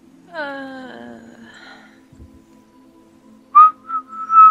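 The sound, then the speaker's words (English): A person whistles clumsily: a wobbly, breathy attempt with harmonics sliding downward, a pause, then three short, shrill, uneven whistle bursts at the end. “Attempts to whistle. Dreadfully.”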